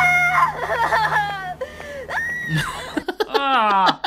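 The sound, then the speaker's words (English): A woman screams in a string of loud, shrill bursts from a film, her voice rising and falling in pitch, then breaks off briefly before one last wavering, strained scream. “Yeah, her scream was the worst scream of all time. Inserting scream now.”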